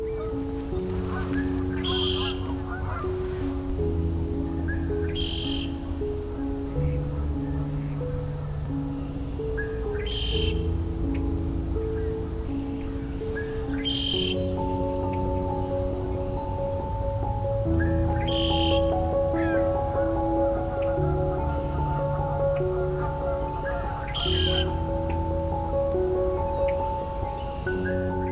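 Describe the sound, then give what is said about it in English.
Red-winged blackbird calls ring out again and again, a bright burst every few seconds, over a dense, steady chorus of many other birds chattering. “For me, the arrival of the initial all-male flocks of red-winged blackbirds is one of the first signs of spring.”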